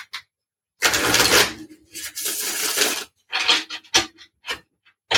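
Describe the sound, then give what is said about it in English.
A deck of cards is shuffled one last time: two longer riffling bursts of rapid papery flutter, followed by several short snaps and taps as the deck is squared up. No one speaks. “And let whatever questions come to your mind, come to your mind as I shuffle them one last time.”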